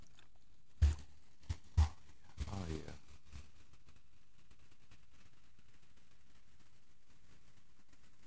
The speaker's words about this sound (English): Oh, does that sound so good? The bubbles.